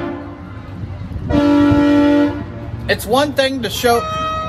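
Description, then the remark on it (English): A truck horn blares in one long, steady, loud blast lasting about a second over a rumbling traffic background, and then voices start talking. The truck is honking to show its support. “The truck honks, or the exhaust is loud, or there's a lot of flags on it.”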